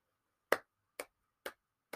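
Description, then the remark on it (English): Four hand claps in a steady, even rhythm, each a sharp, bright smack, clapping along to a song for remembering the books of the Bible. The first is loudest and the next three slightly softer, with silence between them and no voices. “Why are you clapping?”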